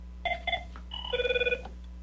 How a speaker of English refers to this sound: Oh, here we got a phone call.